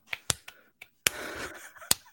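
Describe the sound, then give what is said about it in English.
A handful of sharp, separate hand claps from an audience ring out in a slow, uneven rhythm, with a brief spill of overlapping noise partway through, moderately loud. “Slow clap, everybody.”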